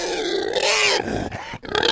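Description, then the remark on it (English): Loud, harsh pig grunts and squealing snorts run almost continuously for two seconds, rough and throaty with rising and falling pitch, broken by one brief gap before a final burst. “Hope the pig noises are sounding good.”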